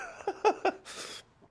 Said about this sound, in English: Had a cough attack. Oh my god.